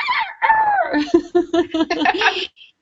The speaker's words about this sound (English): Thank you for the rooster, perfect timing.